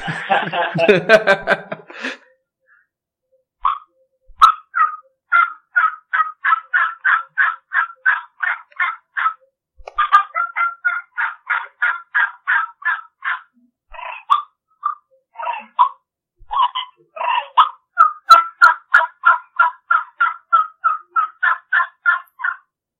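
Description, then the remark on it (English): A batwing triple-reed diaphragm turkey call worked through a long series of rapid, raspy gobbles and clucks, loud with a strong rhythmic chop, opening in a dense burst and then running in quick repeated pulses with brief pauses. “So that's that batwing triple read we were talking about, right?”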